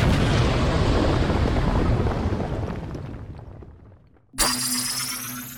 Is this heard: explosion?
yes